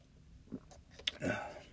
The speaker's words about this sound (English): Sorry, I had to take a drink of water. Yeah, I sometimes chew my water.